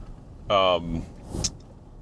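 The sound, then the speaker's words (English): A steady low rumble of a truck driving through a neighbourhood in Brooklyn, heard from inside the cabin, with a brief voice rising over the engine hum partway through and a faint click near the end. “So why are we in the car today?”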